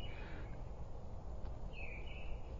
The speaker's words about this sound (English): If you can hear that bird,